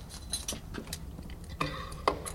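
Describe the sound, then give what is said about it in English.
A large iron key turns in the lock of an iron gate at Green-Wood: low metallic scraping and rattling, then two sharp, ringing clunks about half a second apart as the mechanism gives. No voices. “And so you hear the lock go there.”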